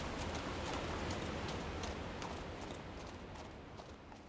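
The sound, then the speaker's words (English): Horse hooves clip-clop at an unhurried walking pace as riders head home on horseback, the soft irregular thuds partly buried in a steady wash of outdoor noise, with no voices. “Then we hop on the horses and we head home.”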